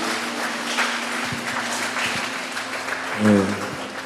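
A crowd applauds steadily for several seconds, a dense wash of clapping at moderate volume, with a brief voice rising over it near the end.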